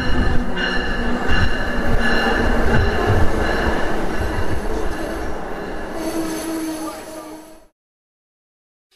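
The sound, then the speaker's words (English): An Amtrak Keystone Service passenger train, Train 600, rumbles loudly and steadily along the rails, sustained high-pitched wheel squeals ringing over the roar, until the sound cuts off abruptly into silence near the end. “Welcome to all those traveling on Amtrak Keystone Service Train 600.”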